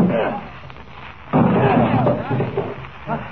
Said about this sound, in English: All right, we'll have to break the door down.